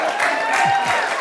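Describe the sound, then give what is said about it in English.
An audience applauds with dense, steady clapping, loud and continuous for a brief moment, for a mention of being an accountant. “I've actually never heard anybody applaud being an accountant before.”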